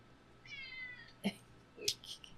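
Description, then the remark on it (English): A cat named Tara Junior Jr. meows insistently, a drawn-out harmonic yowl followed by two shorter, sharper cries, against a quiet background with no talking. “And the cat's yelling at me. You hear him?”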